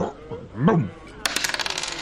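A short voiced exclamation, then dice tossed onto a hard surface, rolling a seven: a quick rattling burst of small, sharp clicks that bounce and tumble for nearly a second, fairly loud.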